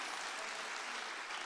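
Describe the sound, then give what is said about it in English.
An audience claps steadily, a dense, even wash of many hands with no breaks or swells and no voices standing out. “The way you clap, it's like I don't love them.”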